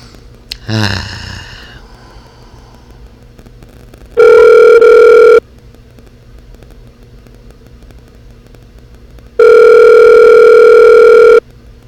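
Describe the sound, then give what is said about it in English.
Two long, steady buzzing ringback tones of an outgoing phone call to a man's regular phone, evenly spaced with quiet gaps between, preceded by a brief chirpy electronic blip at the start. Loud, with no talking. “But I'm going to try to call him one more time on his regular phone, because I just tried Facebook Messenger, which is retarded.”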